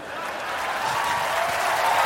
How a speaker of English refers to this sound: Now, can I ask, what was happening that made all those people applaud in that moment? I assume there was something else happening in the theater other than...